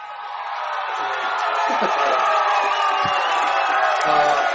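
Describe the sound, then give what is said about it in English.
A large crowd cheers and roars continuously, a dense wash of many voices with scattered whoops and shouts, swelling slightly and staying loud throughout the few seconds. “So definitely a cheer.”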